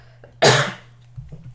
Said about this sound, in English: Sorry, I have to cough.